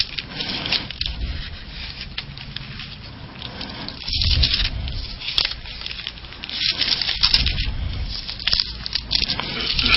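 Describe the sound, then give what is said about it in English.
Many Bible pages rustle and turn at once as people look up Proverbs 28. There is a steady papery crackle with scattered louder flips, continuing without any voices. “All these rustling pages.”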